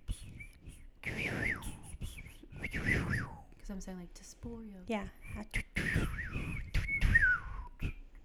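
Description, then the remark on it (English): A person whistles the name of a fiery local liquor called Tesporio in a melodic, speech-like whistled language, with rising and falling tones. The whistling is moderately loud, with brief spoken talk before and between the whistled phrases. “Can you try to whistle that?”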